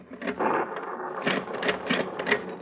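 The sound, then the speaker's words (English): A mechanical cash register clatters as a bill is rung up, its keys and levers clacking in quick, uneven bursts over a steady whirring rattle, moderately loud. “The paper said you only had $15 in your cash register”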